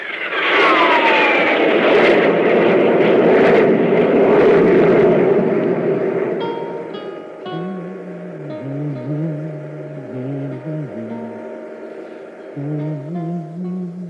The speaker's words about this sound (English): Increase the jet drive on all jets.